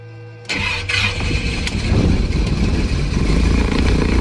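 A propeller airplane engine, on a plane with a LIDAR laser scanning device fixed to its belly, cranks with a brief whine, then catches at about half a second and settles into a loud, steady, rumbling drone that holds for several seconds, with no voices.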